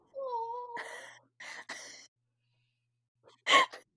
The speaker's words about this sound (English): I love how you both simultaneously gasped and put your hands over your mouth.